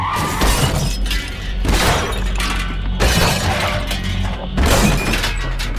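Loud crashes of a car wreck after the car's tires hit a patch of black ice, with glass shattering in about four heavy bursts spaced a second or so apart, each trailing off into clattering debris; no one speaks.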